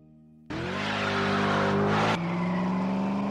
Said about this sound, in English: That's the unmistakable sound of American V8 muscle that revs the hearts of the young and old alike. For some, the feeling has been with them since childhood, but for a lot of Americans, the thrill of high RPM V8s is new.